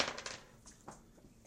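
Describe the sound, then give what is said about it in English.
Dice are rolled for damage in a tabletop game, clattering across a table in a quick burst of small, hard clicks, then a few scattered taps as they settle. The rattle is fairly quiet, with no talking over it. “Okay, two damage. Dice for damage.”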